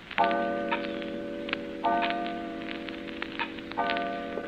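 A clock chimes three times at a slow, steady pace, each ringing tone lingering before the next, while soft ticking clicks continue underneath. No one speaks.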